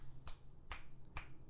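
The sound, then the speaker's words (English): Three crisp finger snaps made by a woman, evenly spaced about half a second apart, each a sharp bright click over a low steady hum. “She's snapping.”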